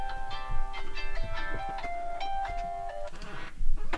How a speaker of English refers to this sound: Was that your alarm, buddy? Was that your 90-by alarm? My phone is on silent.